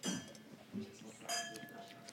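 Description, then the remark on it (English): Wine glasses clink together in a toast during a wine tasting, two light chimes about a second apart, each leaving a brief high ring, with faint voices murmuring underneath. “Do we cheers? Is that appropriate in tastings?”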